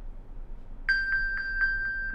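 After a short quiet moment, a phone-finder alert triggered from a smartwatch starts: rapid, evenly spaced high electronic pings at one steady pitch, clear, repeating until the end.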